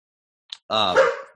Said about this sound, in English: Sorry, the dog is barking here at the door. I don't know if you can hear that.